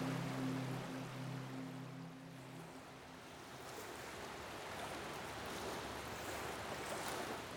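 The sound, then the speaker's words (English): Steady washing of waves lapping against a boat at sea, with a low engine hum droning beneath for the first few seconds before the water noise carries on alone, broad and continuous. “You want to steer the boat for a while?”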